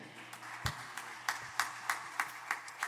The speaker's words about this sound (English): Keep clapping, keep clapping, keep clapping.